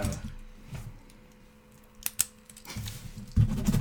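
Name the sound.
paper ripping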